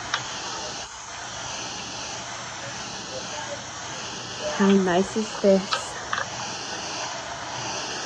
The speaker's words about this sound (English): And the waves are rolling in from the bay.